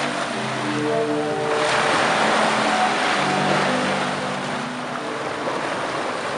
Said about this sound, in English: Yeah, it's essentially it's like a pipe organ where the sea is pushing air through all of the little pipes, I suppose, and they're tuned to some degree.